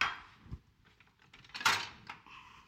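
Batter is poured into a hot pan with a steady sizzling hiss that swells midway, broken by a few sharp metallic clinks of cookware and utensils. No one speaks.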